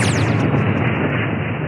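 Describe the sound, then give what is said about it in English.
A plane crash explosion sound effect: a brief descending whine at the start gives way to a loud, sustained, roaring rumble that fills the short clip without letting up. “Kind of a plane crash.”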